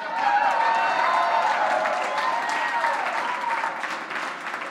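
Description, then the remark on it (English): Sustained audience applause at Midtown Baptist Temple for the preacher's wife, a dense steady wash of many hands clapping at a fairly loud, even level for several seconds, with a few faint whoops and cheers mixed in. “Given that I am a Baptist preacher, I would like to tell you all to give a round of applause for my incredible wife,”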